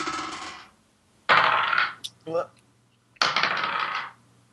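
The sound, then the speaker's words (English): Dice are rolled for initiative in a tabletop game, clattering across a hard tabletop in three fairly loud bursts of rattling and tumbling, with a few quick clicks between the second and third rolls. “We have to roll for initiative.”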